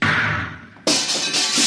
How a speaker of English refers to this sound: I'll have to blast the lock.